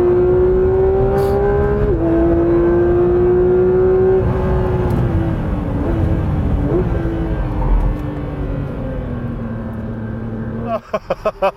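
A Porsche GT3 RS sports car engine roars loudly during a test drive, its pitch climbing and dropping through several quick gear shifts before it cuts off abruptly into a few short bursts.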